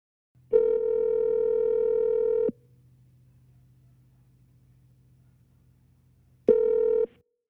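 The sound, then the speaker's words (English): An outgoing phone call to a flatbed truck driver ringing on the line: a steady electronic ringback tone sounds for about two seconds, then a pause with faint line hum, then the tone starts again. No one speaks. “Go ahead and hit the dialer.”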